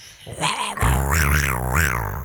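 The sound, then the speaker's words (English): A black panther growl sound effect: a short rasp, then a deep, throaty growl that swells and wavers up and down in pitch for under two seconds, loud and with no talking. “International sound of the panther, the elusive Black Panther.”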